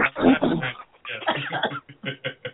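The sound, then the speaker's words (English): A fairly loud bout of coughing: a long harsh cough, another rough stretch, then several short choppy coughs trailing off. “I'm going to cough.”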